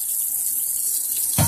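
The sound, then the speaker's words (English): A faucet runs steadily with a bright, hissing rush of water, ending in a brief fuller splash near the end as it fills a clear cup; no one speaks. “This is a clear cup that I just poured it in.”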